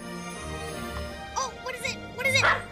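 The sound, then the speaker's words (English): A dachshund puppy named Buster lets out three or four short, high-pitched yips in quick bursts over a soft, steady musical background, moderately loud. “Aww, he's a little dachshund!”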